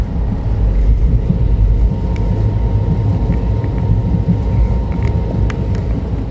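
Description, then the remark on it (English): A steady, loud low-frequency rumble fills the whole stretch, the constant drone of riding inside a moving train at 4 a.m., about 40 minutes before it arrives in Coimbatore, Tamil Nadu, India, with faint clicks and rattles scattered over it and no voices. “40 more minutes before this train arrives Coimbatore in Tamil Nadu, and that's the last major leg of this journey.”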